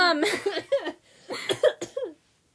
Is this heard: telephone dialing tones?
no